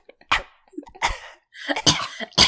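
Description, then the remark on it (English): Four small, short coughs from someone entering a smoke-filled house, spaced irregularly with brief gaps of breathy throat noise between them, no talking alongside. “gives off a few baby coughs, as it's a little too thick.”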